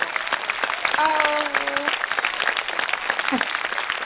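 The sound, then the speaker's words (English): A burst of applause for a guest artist on a radio show, dense irregular clapping spread across the whole stretch at steady moderate loudness, with a brief voice-like tone rising out of it partway through. “Thank I had applause and everything.”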